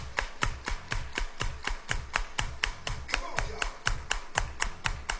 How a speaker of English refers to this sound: Everybody clap your hands. Come on, y'all.